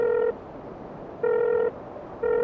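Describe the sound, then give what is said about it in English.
Three loud, steady electronic phone tones beep at a slow, even pace, each lasting under half a second with short gaps between, like keypad dialing tones, with no voices present. “Thank you for calling the droid assistance hotline.”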